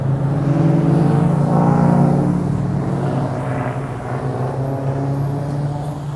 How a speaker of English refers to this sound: Speaking of cars with no mufflers, a lot of cars have straight pipes installed. They got other assorted modifications.